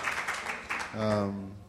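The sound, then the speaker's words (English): Scattered audience clapping at the mention of the film As Good as It Gets, a thin patter of claps with a few sharper ones, lasting under a second before a man's voice begins talking over the fading applause. “Not as many claps.”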